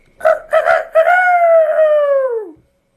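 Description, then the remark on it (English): A voice imitates Peter's rooster-like crow, loud: two short clipped bursts, then one long sustained call that slides downward and cuts off, with no other sounds around it. “trying to imitate Peter's crow”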